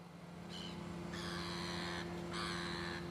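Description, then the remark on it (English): A gull gives three harsh, drawn-out calls, the middle one longest, over a steady low mechanical hum, as the gate of a lock closes slowly. “A little gull has just landed on it for the ride.”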